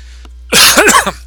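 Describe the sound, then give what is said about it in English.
After a brief quiet moment, one loud, harsh cough bursts out, followed by a rough, throaty tail that fades quickly. No one speaks. “That was the cough button again.”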